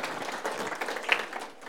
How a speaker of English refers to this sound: Yes, you can clap for my mom, because she's partly responsible for me being here.